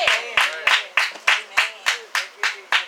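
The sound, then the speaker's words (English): A church audience claps in steady unison at the close of a sermon, about ten sharp, evenly spaced claps at a brisk rhythm, with a voice carrying along underneath. “I thank you for your hand claps.”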